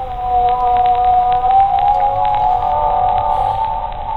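A long, wavering humpback whale (a baleen whale) moan holds steady for several seconds, a loud tonal cry with rising and falling pitch over a low underwater rumble, with no talking.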